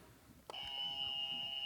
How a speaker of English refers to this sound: And I'm gonna just start naming some names, and if you know who that team is, just ring in on your buzzer and guess what the team is, okay?